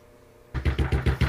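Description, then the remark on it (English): Six quick, evenly spaced knocks on a door, firm and fairly loud with a hollow low thud, following a brief moment of quiet. No one speaks. “So just like knock on the door and then you can come in.”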